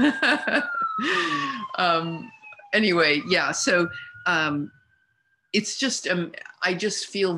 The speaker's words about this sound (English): And I hear this siren going down the street. Yes, it's underscoring what I'm saying.